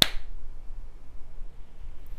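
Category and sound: human body sound, single hand clap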